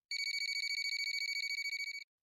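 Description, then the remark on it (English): A telephone rings again after a few tense minutes, a rapid, trilling electronic burst of evenly pulsed high tones lasting about two seconds, clear, with no voices. “Sure enough, after a few tense minutes passed, minutes in which I never took my eyes off Arthur, the phone rang again.”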